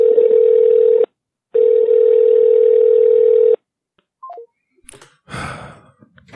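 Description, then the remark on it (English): A telephone call to Carol rings out unanswered: two long, steady buzzing ringback tones in the earpiece, followed by a few quick falling beeps and a brief clattering clunk. “We'll try Carol once again. Come on, Carol.”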